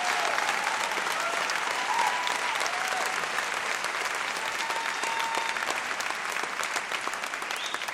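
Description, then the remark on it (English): Sustained audience applause for a speaker on organizing against a six-week abortion ban fills the whole stretch, a dense, steady wash of many hands clapping at an even loudness, with faint cheering tones poking through now and then. “You deserve all that applause.”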